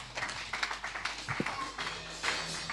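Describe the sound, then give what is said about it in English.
A church audience claps hands in scattered, uneven bursts, sharp overlapping slaps running steadily for a few seconds at moderate loudness, with no clear speech over them. “You didn't clap your hands, church.”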